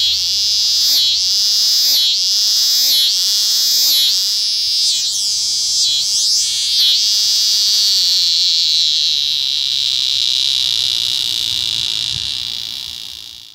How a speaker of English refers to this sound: Different species have different sounds. A scissors grinder cicada sounds like someone sharpening scissors on a grinding wheel.